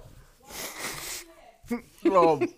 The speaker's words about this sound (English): I gotta blow my nose.